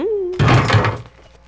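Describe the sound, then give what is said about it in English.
A door is tried without opening: a sudden heavy clunk and a brief rattle as it jolts against its frame, after a short tonal whine and before it settles back to quiet. “I command that you open the door.”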